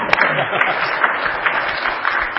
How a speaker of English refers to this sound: Okay. Let's clap for that.